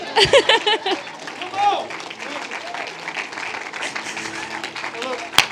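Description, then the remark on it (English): An audience cheers and claps, with a burst of loud whoops and applause at the start settling into steady, dense clapping and crowd noise, with voices shouting throughout. “I could hear, and we cheer for dumb stuff.”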